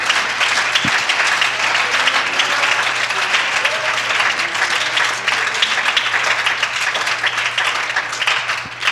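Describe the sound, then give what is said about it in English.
A crowd applauds steadily for several seconds, clapping their hands unto the Lord in an evening church service. It is a dense wash of many hands clapping together, with a low steady hum underneath and a few faint voices mixed in. “And if you serve Him, I want you to clap your hands unto the Lord.”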